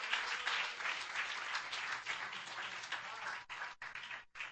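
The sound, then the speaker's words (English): A crowd claps hands to the Lord in a dense, sustained burst of applause, loud, with overlapping claps forming a continuous wash that briefly breaks near the end. “Come on, clap your hands to the Lord right now.”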